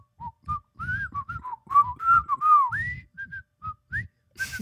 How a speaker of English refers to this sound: I occasionally sing J-pop to myself. So yes, I do whistle.